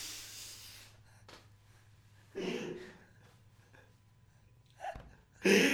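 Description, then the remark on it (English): Heavy breathing right into the microphone, with several loud breathy bursts and snort-like exhales spaced irregularly over a low steady hum, no talking. “Me breathing?”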